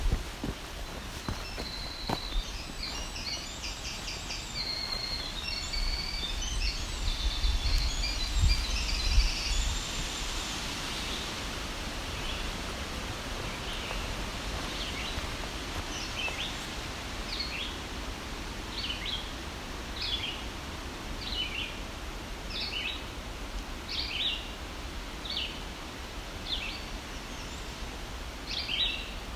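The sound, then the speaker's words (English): A black-throated green warbler sings in fairly dense, dark woods that are not very tall, a series of thin, high notes repeated steadily in the back half, over crunching footsteps and a low rumble of wind. “The woods aren't very tall, but so these woods are thick enough to have black-throated green warbler here.”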